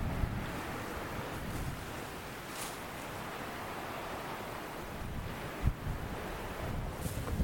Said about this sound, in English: You can hear the sea in Church Bay below. Gentle are the waves. I'm the only person around. It's the lovely soothing sound of water just rolling. The waves just rolling onto the shore here.